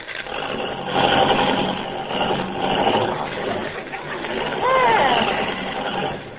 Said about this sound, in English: You know, this car doesn't work very well. Start it again. I'll brace myself.